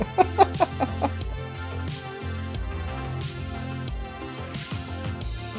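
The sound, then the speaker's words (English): Two voices imitate chicken clucking together, opening with a quick run of sharp, rhythmic clucks before settling into a steady, overlapping warble. “Two chickens in unison.”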